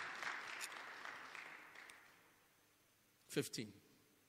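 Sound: audience clapping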